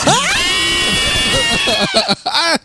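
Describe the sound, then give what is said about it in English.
Several voices scream together in a loud, sustained, high-pitched burst that swells up and holds, then breaks into shorter excited yelps before cutting off. “I'm so mad we all screamed with you.”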